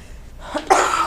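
A person coughs: a short, harsh burst of one or two rough coughs after a brief quiet moment, with no talking.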